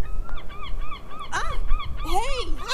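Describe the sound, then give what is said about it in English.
Seagulls at the beach squawk repeatedly as two of them dive, a string of short harsh calls building into louder, overlapping cries near the end over a low background rumble. “two of them suddenly dove at Stevie and I”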